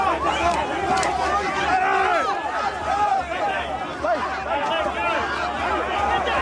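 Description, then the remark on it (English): A large protest crowd in the streets of Sydney fills the air with dense, overlapping voices and shouts, a steady loud roar of many people talking at once with no single voice standing out. “Fast forward, 15 months later, 16 months later, and this is, these are the streets of Sydney now.”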